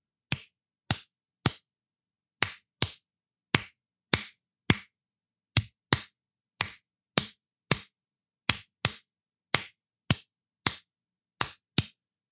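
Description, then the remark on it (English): Hands clap out a slow, steady rhythm, with sharp crisp claps falling in repeating small groups separated by short pauses, around twenty claps in all, with no voices. “So for example, if I take that same rhythm and I try to clap it slower at a slower speed, here's what it might sound like.”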